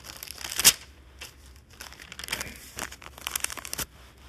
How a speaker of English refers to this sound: I'm turning pages. So if you have your Bibles, please turn to 1 Corinthians.